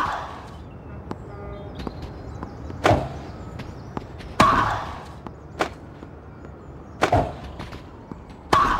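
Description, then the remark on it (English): Sharp, hard thwacks of Venus Williams's tennis racket striking the ball as she serves, extracted from a tape: four loud hits at uneven intervals with a few fainter taps between them, over a steady background hiss. “I think it was Venus said, wow, you know, it sounds just like me serving.”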